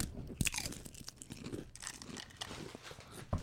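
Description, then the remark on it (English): Loud crunching of Doritos chips being bitten and chewed, with sharp crackly bursts near the start and end and steady munching in between, no talking. “Oh, you want a final crunch?”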